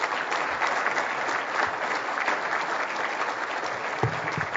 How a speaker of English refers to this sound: Not only you and your family make tremendous sacrifices to do what you do, and let's give the minister and the parliamentary assistant a round of applause and thank them for their contribution.